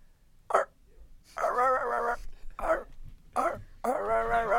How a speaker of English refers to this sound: They were literally barking at nothing. They were barking at the door and no one was at the door. Dogs get crazy when there's weed blowing around. They're still growling at shit, so I don't know.